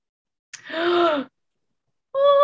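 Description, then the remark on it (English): A person lets out a sudden, dramatic gasp: a sharp breathy intake that swells into a drawn-out voiced sound. After a short silence, another voice begins near the end. “Gasp.”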